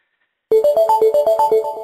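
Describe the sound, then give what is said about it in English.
An incoming text message alert tone on a phone sounds abruptly after a brief silence: a loud, rapid melodic chime of about a dozen bright notes climbing in repeated steps, with no voices. “You'll see here the alert again, and the conversation view refreshes automatically.”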